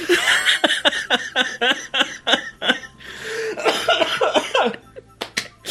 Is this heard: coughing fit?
yes